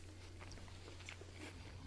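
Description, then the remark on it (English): Crunchy chewing of a bite of Honeybee apple by a woman, a run of quick wet crunches at an irregular pace over a steady low hum, with no one talking. “You can hear her still chewing. Chewing the honeybee apple.”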